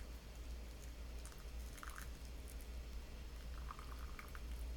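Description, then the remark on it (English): Hot water is poured slowly and steadily over tea leaves in a bowl, a soft continuous trickling hiss with faint gurgles, quiet, with no voices. “And once you are settled and comfortable again in your body, go ahead and slowly add water over your leaves.”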